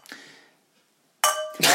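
Glasses clinking together in a toast: a faint tap, then a loud, bright clink with a lingering ring and a quick second clink right after. Nobody speaks.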